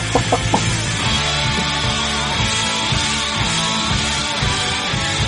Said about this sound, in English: Oh, watch the chicken.